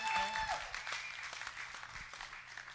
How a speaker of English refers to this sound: Okay, and so, did y'all already applaud for them? Did you do that? Oh, okay.